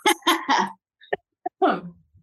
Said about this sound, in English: Like, one second, I'm just going to have a cough attack here.